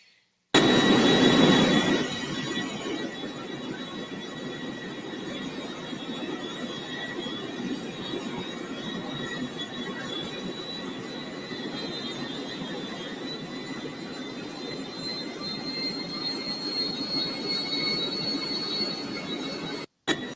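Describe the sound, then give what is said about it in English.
A steady, loud jet engine roar fills the whole recording, a broad rushing drone with a high thin whine that slowly climbs in pitch, opening with a brief heavier blast. “Hopefully not on either one of those planes.”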